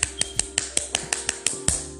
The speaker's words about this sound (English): We need to just clap it up one time for the fact that Friday's here.